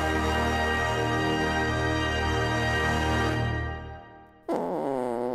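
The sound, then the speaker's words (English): A long, loud, buzzy fart rumbles steadily for about four seconds, unbroken, then trails off before a voice briefly cuts in. “And the sound of that fart was”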